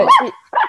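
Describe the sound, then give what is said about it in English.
A small female Brussels Griffon dog gives two quick, high-pitched barks, the first longer and the second clipped, with a brief pause between them. “Even her bark's cute.”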